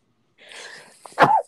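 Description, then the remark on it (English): A single loud sneeze: a breathy, hissing inhale builds for about half a second, then a sharp burst explodes and trails off quickly, with no talking around it. “Excuse me. Bless you.”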